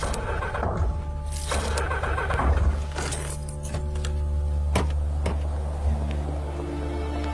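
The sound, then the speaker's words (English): The engine of a speeding car being pursued by a traffic patrol off the M25 at junction 16 drones loudly and steadily with a deep, humming tone, broken early by bursts of rushing noise and later by a couple of sharp knocks. “Traffic 327 pursuing speeding vehicle off M25 at junction 16.”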